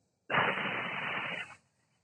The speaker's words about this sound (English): Hiss it out of the mouth again. One more time. Inhale. Hold. And hiss that exhale out.